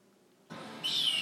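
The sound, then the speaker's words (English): A single high, thin call of a white bird in a movie soundtrack, with a slightly falling pitch, heard over a sudden wash of steady background noise after a brief quiet moment. No one speaks. “There's some white birds.”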